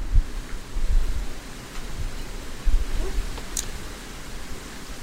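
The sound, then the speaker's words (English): Strong wind roars steadily outside, a broad rushing noise with low gusty buffeting against the microphone that swells and eases over several seconds, with no talking. “So windy today, Jesus.”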